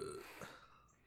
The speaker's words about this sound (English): I'm probably gonna burp, you guys. And it happened, and they just said, well, we appreciate the warning. I said, most people don't get one, so yeah, it's true. Usually that's how you say hello, just a burp outside of the podcast.